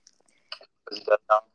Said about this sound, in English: Can you stop munching?